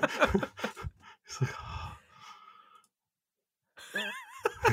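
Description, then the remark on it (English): A person imitates Howard's heavy, noisy breathing, constant rough rasping puffs through mouth and nose, followed by a brief silence and then a few wavering, whistly breaths and grunts. “Yeah, he's just constantly breathing through his fucking mouth and nose, and I just can't stand it.”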